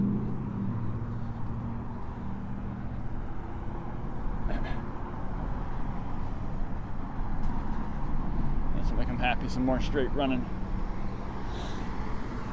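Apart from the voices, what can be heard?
road traffic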